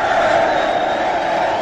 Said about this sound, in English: Crowd always seems to be excited whenever Jack Windsor comes in. I don't know why it is, but nobody else gets those applause except you.